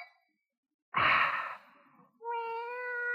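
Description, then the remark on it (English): A sudden breathy, hissing burst, then after a brief pause a drawn-out, tonal cat meow, clear, with no talking. “The cat?”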